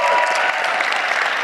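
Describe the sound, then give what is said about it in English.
Steady, loud applause from a crowd giving another round of applause to two men, a dense wash of many hands clapping at once with no pauses, sustained evenly throughout. “You all give them another round of applause.”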